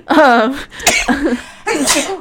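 A loud sneeze bursts out after a drawn-out voiced wind-up, followed by some breathy vocal sounds and a second rushing exhale, with faint voices around it.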